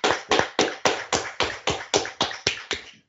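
About eleven sharp hand claps in a steady, even rhythm, roughly three to four per second, each a crisp bright smack that fades quickly, with no voices.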